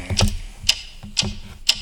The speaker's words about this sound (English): Oh, that's right. The Potter Puppet Pals. Yeah. The mysterious ticking noise. That mysterious ticking noise.